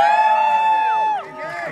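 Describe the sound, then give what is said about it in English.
A crowd cheers when asked who is there to cheer on the next president of the United States, led by a loud, sustained high whoop that holds steady and then slides down in pitch, with softer shouts and babble continuing after it. “Who's here to cheer on the next president of the United States?”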